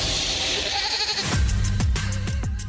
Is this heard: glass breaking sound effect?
no